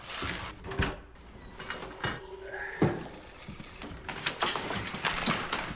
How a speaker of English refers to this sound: Door's gonna open here.